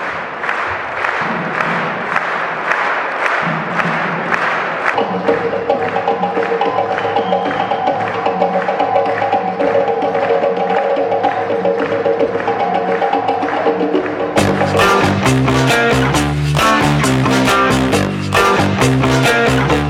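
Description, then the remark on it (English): A group claps together in a steady, even beat, loud and continuous. Tonal music soon joins the clapping and swells into a fuller, denser sound toward the end. “the rhythm of the world. Keep clapping.”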